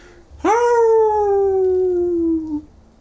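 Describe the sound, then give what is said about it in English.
A person's voice imitates a mournful dog howl, one sustained, slowly falling tone of about two seconds that ends with a small upward catch, loud with no other sounds. “It's like a distressed dog.”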